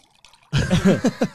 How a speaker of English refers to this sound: Because I'm not going to even pretend I'm not pouring water.